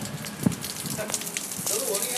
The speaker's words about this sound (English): Oh, I love the sound of that as well, rain hitting pavements and stuff.